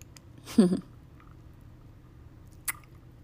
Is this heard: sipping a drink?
yes